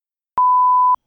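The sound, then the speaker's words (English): A single steady electronic beep at one pitch, held for about half a second, loud and clean with no other sounds around it, marking the start of a spoiler section. “Please skip ahead 1 minute and 30 seconds after the beep.”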